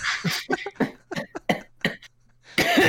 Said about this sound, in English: That's smoker's cough.